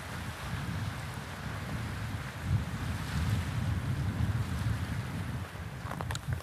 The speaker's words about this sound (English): Listen to this beautiful sea.